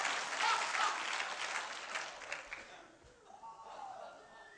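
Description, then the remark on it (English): An audience breaks into loud, dense applause that fades after a few seconds, leaving scattered claps and some murmuring voices. “But somebody clap like God's bigger than the goofiness. You better clap and don't act like you're perfect.”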